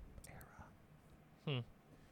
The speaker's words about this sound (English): Oh, you guys just got a big gulp there.